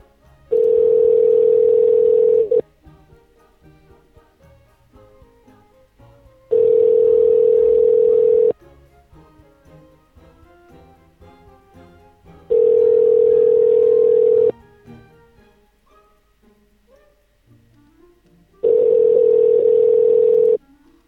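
A telephone ringback tone purrs four times, each steady buzz lasting about two seconds with roughly four-second silent gaps between, loud, as a call to a business rings unanswered and goes to voicemail.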